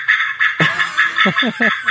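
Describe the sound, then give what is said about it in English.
Birds chirp in a quick, steady series of bright, repeated notes, joined partway through by a few lower, rougher calls. Clear, with no voices. “Yeah, it's birds.”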